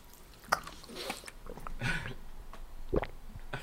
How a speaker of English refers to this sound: That was my throat next to the mic while I swallowed, like those mics in Avatar.